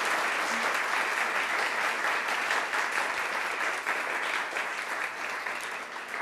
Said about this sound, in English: So if you could do me a huge favor and give a quick applause to our panel before we get started. Thank you.